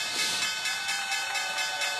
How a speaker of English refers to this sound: JP Morgan, there's the opening bell, NYC. You see that?